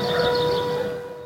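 Town air raid sirens wail steadily, a sustained tonal drone with layered pitches, filling the whole short stretch without any voices.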